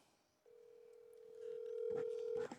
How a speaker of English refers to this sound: Oh, we got to make a phone call. The Salty Donut.